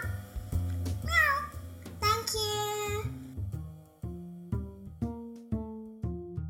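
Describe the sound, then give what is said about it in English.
A child voices two drawn-out, gliding meows, imitating a cat, over a steady bouncing musical backing. The meowing then stops and the plucky, rhythmic music continues alone. “My favorite animal is a cat. Meow. Meow, meow.”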